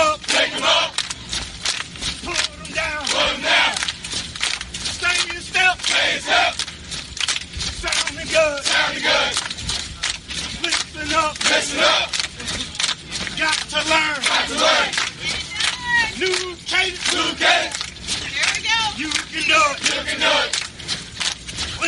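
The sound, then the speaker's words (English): A group of voices chants a military cadence call in steady, rhythmic unison, loud and continuous, with a faint crunch of marching footsteps beneath the repeated call-and-response phrases. “And we're going to do that little Cadence Call.”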